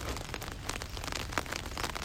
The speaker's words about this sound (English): Rain, rain, and more rain all night long.